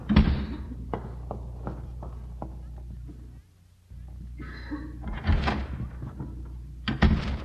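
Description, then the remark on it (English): A door slams shut with a sharp, heavy bang as a man leaves, followed by scattered lighter knocks and rattles, then another loud thud near the end. “Well, I couldn't see him from where we were hiding, but I heard the door slam.”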